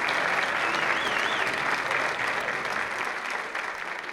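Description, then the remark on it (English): A steady round of applause, many hands clapping in a dense, even wash that holds strong throughout before easing slightly at the end, with a faint whistle near the start. “Ladies and gentlemen, let's all stand and give a nice round of applause.”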